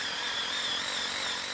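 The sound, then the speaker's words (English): A steady, high-pitched whine of a power drill running continuously as it drills into a Christmas tree trunk for a tree stand, with a strong buzzing tone and no pauses or talking over its short duration. “Colin is just about to drill a tree for one of the stands.”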